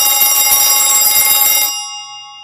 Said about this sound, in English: My mother's hard of hearing, so our telephone sounds like a fire alarm.